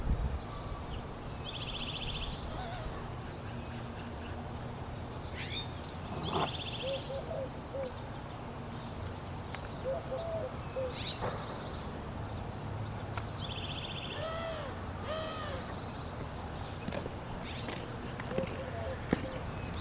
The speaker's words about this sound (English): There sure are a lot of birds out today, aren't there? Listen to them.